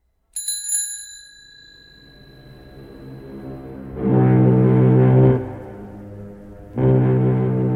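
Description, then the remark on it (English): A single bright bicycle bell ding rings out clearly and fades slowly, followed by two loud, low, droning horn-like blasts. “If a bicycle bell wanted to be a foghorn, it would have to learn to choose how it began its sound.”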